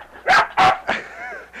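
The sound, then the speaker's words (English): A dog right beside a microphone barks three times in quick, loud, close succession, then lets out a short rising whine, sounding agitated and excited. “Well, I guess we flashed the international dog sign for I'm going to stick my finger in your ass, and the dog went nuts.”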